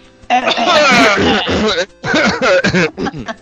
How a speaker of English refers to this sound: Anyway, get your coughs out now.